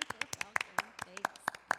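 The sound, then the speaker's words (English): One person claps loudly to make it sound like many people applauding: a quick, slightly uneven burst of about a dozen sharp, bright claps over a couple of seconds. “I'm going to clap really loud so they think there's lots of people in here clapping.”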